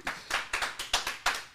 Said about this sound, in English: Round of applause for episode 3 of 10 Minute Talks